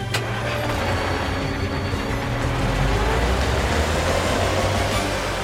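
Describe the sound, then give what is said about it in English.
A car engine rumbles steadily and loudly as the vehicle, Carl, pulls away and drives through the streets, with a brief click at the start and a continuous broad road noise throughout; no one speaks. “Carl drives through the streets.”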